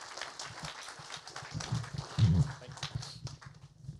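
An audience applauds as a guest is invited up to a microphone, a dense, steady patter of many hands clapping at once that carries on for the whole few seconds at a moderate level.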